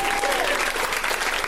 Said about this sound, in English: Hey, a round of applause for that gentleman. He's very fit.